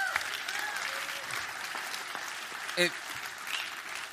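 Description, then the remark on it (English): A church audience applauds steadily for a man given a token of appreciation for coming up, a dense wash of many hands clapping at an even, sustained level, with a brief brighter burst of a whistle or cheer near the end. “Everyone give him one more hand clap.”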